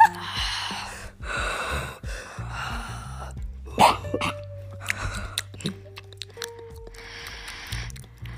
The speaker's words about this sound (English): I'll just keep it on for some reason and then don't talk. No. And then annoy people and start breathing like.